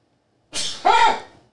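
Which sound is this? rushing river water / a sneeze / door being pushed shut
a sneeze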